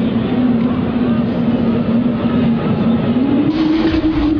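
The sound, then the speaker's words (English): An eerie, trumpet-like 'sky trumpet' tone heard during a baseball game holds as a loud, steady low drone, then bends slightly higher in pitch toward the end, all over a continuous rumbling hiss. “To me, it's the sky trumpets is an appropriate way of describing it”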